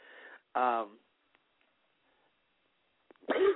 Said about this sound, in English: excuse me, I'm losing my voice, coughing all this.